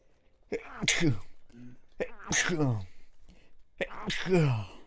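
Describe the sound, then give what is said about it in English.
Three sharp sneezes in a row, each a quick inhaled build-up snapping into a loud, bright burst, spaced about a second and a half apart. “Bless you.”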